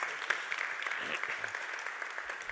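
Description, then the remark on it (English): Steady audience applause, a dense crackle of many hands clapping at even loudness throughout, with no voices standing out. “So we want to applaud Tim and thank him for his bravery.”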